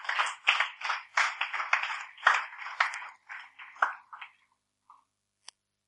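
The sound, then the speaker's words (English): An audience applauds together for a person attending for the first time, a dense burst of clapping lasting several seconds before thinning out to a few scattered last claps and fading to quiet. “Let's clap for him.”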